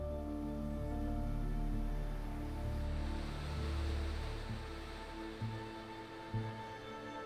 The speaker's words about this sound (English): We're at the north end of Idaho Falls on the west bank of Snake River, where James Wood brought Jeralee Underwood.